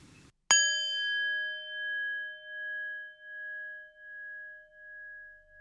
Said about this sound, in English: So I will go ahead and ring the bell.